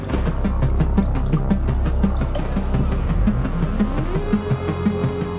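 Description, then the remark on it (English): Water pours steadily from a solar-powered treatment machine that turns toilet waste water into clean water, while a pump chugs in a rapid, pulsing rhythm underneath, its motor tone rising slightly near the end. Fairly loud, with no voices. “And then the waste from the toilets would come here, it'll go into the machine, and then using solar power, we can turn the poopy water into clean water.”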